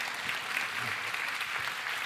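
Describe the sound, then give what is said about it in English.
Steady applause from a church audience on Father's Day, honoring the dads standing in the room and in the balcony, a dense wash of many hands clapping at an even level throughout, with no voices standing out. “I applaud you.”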